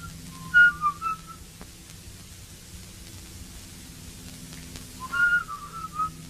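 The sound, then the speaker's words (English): Two short bursts of whistling, a few seconds apart, with wavering, overlapping notes as two bored boys in a bedroom try to whistle but keep starting at the same time and break off quickly, over a steady low background hum. “So in the bedroom, the boys are super, super bored, and Mike and Davey are both trying to whistle, but they keep starting at the same time and then glaring at each other.”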